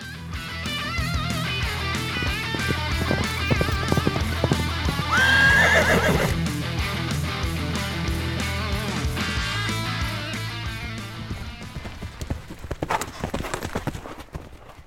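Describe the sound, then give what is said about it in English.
A horse whinnies loudly partway through, a high shrill neigh, while steady clip-clopping hooves keep a rhythmic beat from start to finish. “I bought you a horse?”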